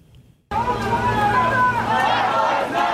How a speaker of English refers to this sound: Protesters chanting on a New York City subway platform for Jordan Neely, who was killed by a subway rider after being placed in a chokehold.